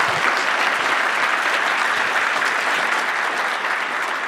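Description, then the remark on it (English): An audience applauds steadily for the speaker's colleagues at the close of a presentation, many hands clapping in a dense, even patter that holds a constant loudness for about four seconds with no talking. “and let's just give them a quick round of applause.”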